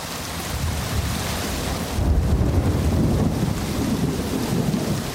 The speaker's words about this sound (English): Rainy season in the forests of Ituri province in northeastern Congo. At its most torrential, a curtain of rain reduces visibility to a few meters.